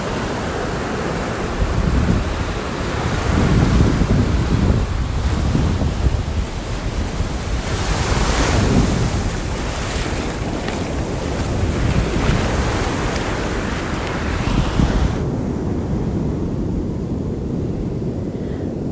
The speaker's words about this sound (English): Maybe you can hear it in the background, but I'm on a beach.